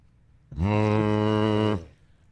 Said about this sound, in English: What was it like for Brady? Third down to hear that foghorn go off.